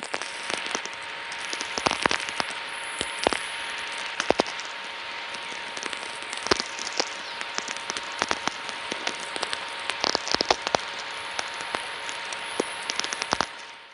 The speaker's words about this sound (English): These are the frequencies where you can pick up signals generated within our atmosphere and around the planet itself. The origins of these signals are not entirely understood, although some are clearly related to lightning, like these.